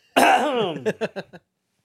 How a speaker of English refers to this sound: Stop coughing in the goddamn mic, dude.